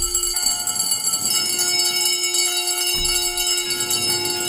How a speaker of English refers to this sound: Then he's upstairs, and as the bells ring, they start out really slowly and quietly, and then it gets louder and louder, and the camera shakes around Scrooge.